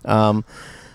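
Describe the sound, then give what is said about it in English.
A crow gives one loud, harsh caw lasting about a third of a second, and then only faint background hiss remains. “You just hold it up so they can hear the crows.”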